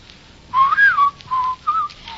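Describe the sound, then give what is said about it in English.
A person whistles a short, wandering tune in clear phrases, the melody rising and falling across three or four bursts with brief pauses, over a quiet background. “Shan't whistle. Go outdoors and whistle in the street.”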